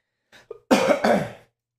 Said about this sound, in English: Apologize for all the coughing.